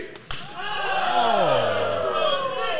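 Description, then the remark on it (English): A single sharp, loud open-hand chop cracks against a wrestler's bare chest out in the audience at a wrestling match, followed immediately by a crowd's swelling, sustained cheer that carries on after the hit. “Big hits into the chest in the audience.”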